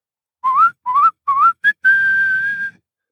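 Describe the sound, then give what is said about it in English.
A clear whistle made with tightened lips to demonstrate how to whistle: three short rising notes, a quick chirp, then one long steady held tone, bright and alone with no talking. “You have to tighten your lips just a little bit more, like this.”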